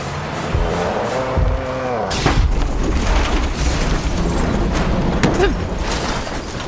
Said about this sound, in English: My world flipped right then. Literally. The impact came towards the rear and knocked the truck completely off the ground and onto its side. I wasn't buckled in and immediately hit the roof.